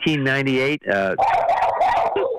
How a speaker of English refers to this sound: And I'm going to name that dog Muggsy. It sounds like a dog that we named Muggsy.